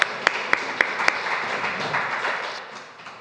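A crowd applauds, opening with five sharp, evenly spaced claps over a steady wash of many hands clapping, which holds for a few seconds before gradually tapering off.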